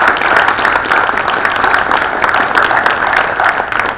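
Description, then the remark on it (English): A crowd breaks into sustained applause for an administrative assistant, a dense steady patter of many hands clapping at once, loud, holding for several seconds before easing slightly at the end. “So like a round of applause for Mrs. Peggy Elder, my administrative assistant.”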